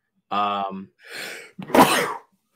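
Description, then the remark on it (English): A single sneeze: a voiced, drawn-in wind-up followed by a breathy rush and a sharp, explosive burst, fairly loud and with no talking around it. “Bless you.”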